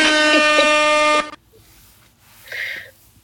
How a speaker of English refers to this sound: But thank you, air horn for that.